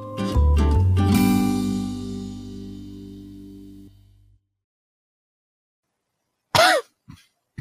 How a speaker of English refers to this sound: I was losing my voice right at the end there. There's that cough again,